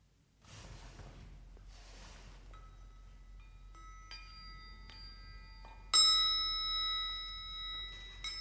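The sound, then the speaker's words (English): Chimes ring out after a couple of soft rustles: several light, gentle strikes, then a louder, brighter strike whose tones shimmer and sustain until the end. A child plays the chimes to end a period of silence. “will play the chimes to end the silence.”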